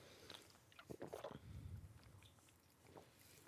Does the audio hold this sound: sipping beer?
yes